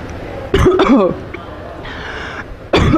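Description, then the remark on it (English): A person coughs: two quick, harsh coughs in a row, a short quiet stretch, then one more sharp cough near the end. “Coughs are a common signal of energy shifting.”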